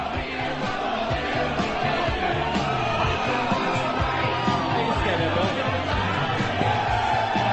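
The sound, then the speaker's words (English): A loud, dense crowd roar fills the whole stretch, a steady wall of cheering and yelling with scattered whoops rising out of it, never dropping off, as the crowd goes wild while Hulk Hogan poses and works the crowd. “The Hulk is posing, and the place is going nuts.”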